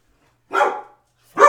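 A dog barks loudly at something, two sharp barks spaced about a second apart with silence between them.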